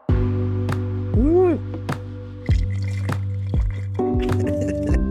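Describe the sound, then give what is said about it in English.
The second wine of a tasting pours steadily into a glass, a continuous liquid stream with gurgling splashes and the rising ring of a filling glass, lasting a few seconds. “Like, let's move on to the next wine. Let's start. Yeah. Okay. Yeah. Yeah. Yeah. Pour.”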